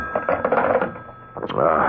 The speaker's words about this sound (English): What? Oh, it's the phone.